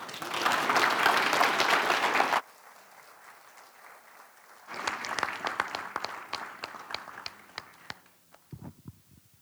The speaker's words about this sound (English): He said when everybody was clapping and crying.